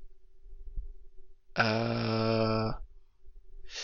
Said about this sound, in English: Excuse me. God, that was a burp.